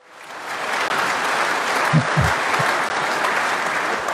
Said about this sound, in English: How about a clap track? Get that clap.